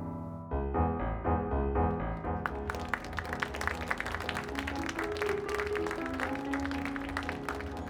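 Steady music begins, then about two seconds in a burst of hand clapping by a mother, clapping uncomfortably, breaks out and continues, dense and sharp, layered over the sustained music until the end.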